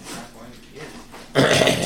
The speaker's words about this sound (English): your dog is digging for something. I know. I know exactly what it's digging for.